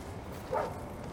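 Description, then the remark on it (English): A single short dog bark, moderately quiet, pops up briefly over a low, steady background rumble with no one talking. “So is your dog friendly?”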